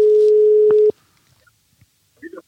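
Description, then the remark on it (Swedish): A steady, fairly loud telephone dial tone hums for just under a second as a call is placed, then cuts off abruptly, leaving near-silence broken by a few faint clicks and a brief soft noise near the end. “Vi tar och ringer Glenn Strömberg så han får chansen och snacka lite.”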